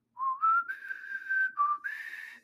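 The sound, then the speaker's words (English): A person whistles Proto Man's short, bright melodic jingle from the Mega Man games, the tone stepping between a few sustained pitches with brief breathy gaps, clear with no talking over it. “And I like that Proto Man whistle. I totally want to learn that.”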